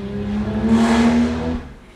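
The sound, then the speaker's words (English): A modern car revs loudly as it passes by outside, the engine note swelling and then fading away over about two seconds, with no voices present. “That's neither an E-Type nor a Pagoda, is it? That's something very modern.”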